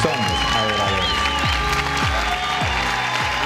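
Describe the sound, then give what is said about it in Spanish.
Loud, sustained audience applause welcoming a pastor at Presencia Viva fills the whole stretch, a dense steady wash of many hands clapping, with music playing underneath. “Quiero pedirles que reciban con un caluroso aplauso al pastor”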